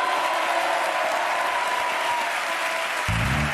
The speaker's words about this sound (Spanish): un aplauso gigante